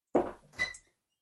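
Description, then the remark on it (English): A door being opened to let a white cat out of the room: a dull knock-like thump, then a brief higher scrape with a faint squeak, all over within about a second. No one speaks. “I'm going to let a very wicked cat out of this room that's making chaotic noises.”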